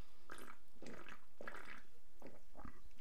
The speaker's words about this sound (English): Hang on, I've been sipping this energy drink, that might be why. Hang on, let me take another sip.